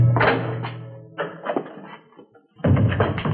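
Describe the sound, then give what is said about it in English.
A door is pushed shut with a solid, low thunk as a visitor is invited in, in Richard Diamond, Private Detective, among a few other knocking, shuffling bumps spread over a few seconds, with no voices. “Come on in, honey, and shut the door.”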